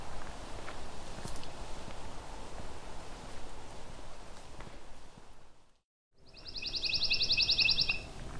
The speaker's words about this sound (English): It's got a pine warbler right above me now. A fairly yellow bird with a bit of slightly black streaks on the chest.